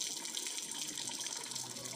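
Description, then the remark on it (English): Steady rain falls without a break, a constant dense hiss of water that stays at an even level for the whole two seconds, with no voices. “They were all ready to go for their program, but the rain, as we can hear, has refused to stop.”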